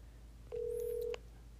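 A phone call ringing on the line: one steady electronic ringback tone lasting just over half a second, clear and alone over a faint low hum, with no one talking.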